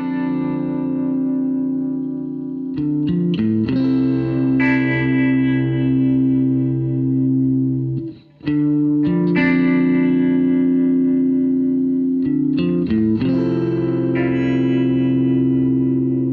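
Sustained electronic music used as a theme tune, with thick, droning synth tones and bright distorted textures that shift in blocks, briefly dropping out around the middle before swelling back; no voices.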